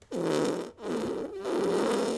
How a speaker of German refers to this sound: Furzwitz. Ja. Ein Stinker. Ein Stinker. Ein Stinker.